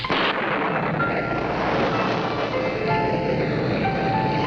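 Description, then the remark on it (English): A sudden storm at night by the water at Rehoboth Beach roars steadily and loud, with rushing wind and crashing surf blending into a dense, continuous wash of noise and low rumbling, with no voices. “I was awakened later. I don't know what time it was. By the sound of a sudden storm.”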